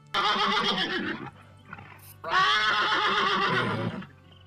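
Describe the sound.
A person's voice imitates a horse whinny twice, loud, each about a second long with a quavering, wavering pitch, separated by a short quiet pause.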